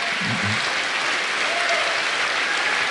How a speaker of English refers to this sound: Of course, he's running for governor. Of course, they're clapping.